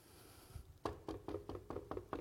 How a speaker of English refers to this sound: I knock again. And no one answers.